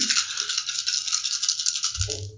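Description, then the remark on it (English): A handful of dice, including bonus dice, are rolled for a second attack in a game; they rattle and clatter in a steady, bright burst lasting about two seconds, with a low voice starting just as the rolling ends. “Oh, he actually did roll quite a few ones.”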